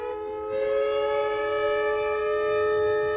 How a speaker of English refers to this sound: Emergency sirens roar at the Chevron refinery in Richmond, while a fire at the refinery sends flames and a plume of thick black smoke into the sky. The alarm means shelter in place.